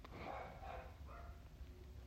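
A dog gives three short, soft barks in quick succession, muffled against a low background hum, with no one talking.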